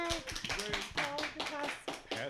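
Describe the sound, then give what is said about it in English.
A group in a circle claps steadily for a couple of seconds to congratulate someone, a dense patter of hand claps mixed with cheering and excited voices throughout. “All right, let's clap.”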